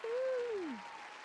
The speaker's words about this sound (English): Let's get some hand claps for Friday. We always get some hand claps for Friday. Let's get it in.